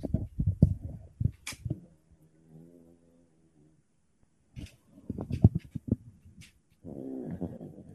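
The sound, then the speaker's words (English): A 30-pound female dog snores loudly close to the microphone, in rough, rattling bursts of breath that come in clusters, with a quieter droning hum in the pauses between them. “She weighs 30 pounds and she snores that loud.”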